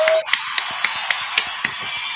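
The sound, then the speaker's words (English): Applause for the show's sponsor, 583 Expressions, with sharp, evenly spaced claps, roughly four per second, standing out over a steady hissing wash of noise. No voices are heard. “And one more time again, keep the round of applause going for 583 Expressions.”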